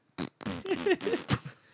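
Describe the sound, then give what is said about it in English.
Someone blows a quick run of wet, sputtering raspberries with the mouth, imitating farts: several loud bursts in a row, some buzzy and pitched, others breathy. “And now that you guys are making fart noises, I just farted.”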